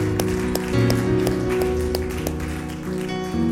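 Scattered, sharp hand claps from a church audience ring out at an uneven rhythm after a prayer, over steady, sustained instrumental chords, with no talking.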